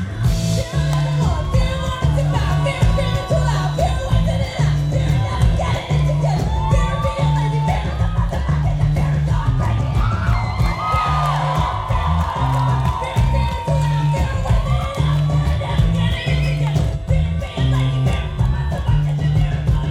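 A loud crowd at the Winnipeg Folk Festival cheers and whoops continuously as a singer belts and falls to her knees, with scattered yells and shouts rising over a dense, steady roar and pulsing low music beneath.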